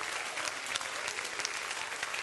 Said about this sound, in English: Oh, somebody clap your hands and rejoice to that right now.